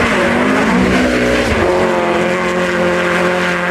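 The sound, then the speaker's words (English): A Morgan car engine roars steadily with a rising, harmonic whine while racing through Central Park, New York, in light snow, mixed with sustained tire skidding noise throughout as the car skids and corners on the snow; loud and continuous, with no talking. “Me and Mel racing through Central Park in our Morgans.”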